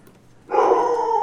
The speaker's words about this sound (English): That's the Mastiff. Yeah. I told you that's a real dog. I forgot about that dog. I don't think it is. It's no real dog would bark that horribly.